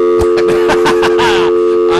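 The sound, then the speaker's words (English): A steady telephone dial tone hums loudly and continuously, with brief clicks and faint warbling line noise layered over it after a call disconnects. “That dial tone is my favorite thing.”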